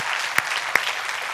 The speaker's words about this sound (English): I know some of you start clapping and I keep talking, but yeah, if you want to give God the glory, go ahead and let's give God the glory.